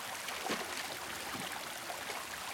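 A waterfall's flowing water makes a steady rushing roar with bright hiss and a few gurgling splashes, unbroken for the whole stretch and with no voices.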